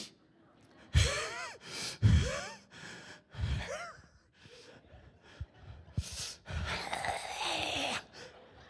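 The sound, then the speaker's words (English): A voice huffs and puffs in heavy, forceful breaths, a few sharp gasping exhales followed by a long drawn-out sigh, fairly loud, imitating angry hard breathing to illustrate wrath, the Greek word thumos. “It's illustrated in breathing hard.”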